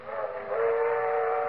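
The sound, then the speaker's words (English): A train whistle sounds one long, steady, reedy blast that swells slightly louder partway through and holds to the end, with a faint rumbling rail noise beneath and no voices. “They're traveling south by train this year.”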